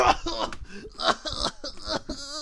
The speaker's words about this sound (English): Oh yeah, I'm dying from a cough.